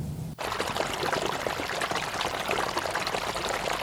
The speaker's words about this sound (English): As we head down into a ravine, about 100 yards in front of us, we hear and then see a rush of water from a flash flood.